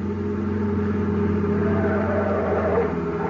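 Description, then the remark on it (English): A car speeds along a highway at around 90, its engine roaring steadily in a continuous, fairly loud drone with deep harmonic hum and road rush, holding an even level throughout with no voices. “car coming up that highway now. Yeah, it sure looks like them. Boy, they must be doing 90.”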